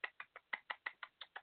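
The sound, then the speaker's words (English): A rapid series of about nine sharp, dry clicks in a steady rhythm, each a bright tick with a hollow ring, the tongue-clicking call of Skippy the Bush Kangaroo, with no one talking. “What's that, a sarcastic clap? No, that's Skippy the Bush Kangaroo.”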